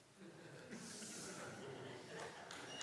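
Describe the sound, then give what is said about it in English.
A single breathy sneeze bursts out as a sharp hissing rush of air, fairly soft, followed by faint breathing and low background noise. “Bless you.”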